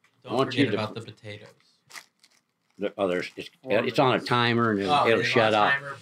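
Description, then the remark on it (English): Paper crinkles and rustles in short bursts, then is laid down, mixed in with people talking over it. “I'm going to lay my paper down.”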